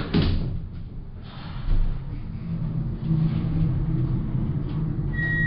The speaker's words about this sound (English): Hearing voices nearby, I quickly ducked into the lift and let it carry me down, deeper, into the facility.